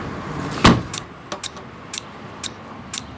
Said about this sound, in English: All right, one final cab door close.